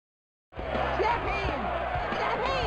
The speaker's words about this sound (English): Slap hands! That's a new sound. It's this week's sound.